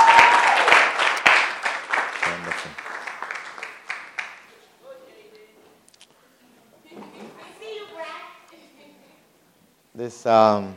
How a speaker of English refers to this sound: Why don't you take your seats with your clap offering?